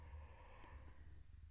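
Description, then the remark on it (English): A single drawn-out yawn, breathy, with a soft voiced tone sliding through it before trailing off. No one speaks. “Why are you yawning?”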